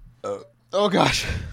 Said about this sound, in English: excuse me, I'm gonna burp. Should not have downed. Okay. Oh, gosh.